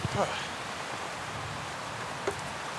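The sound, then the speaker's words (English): A steady, unbroken rush of flowing river water, a broad even hiss that holds its level throughout, with a couple of brief faint blips at the start and near the end. “And the only thing you can hear when I stop talking is the river.”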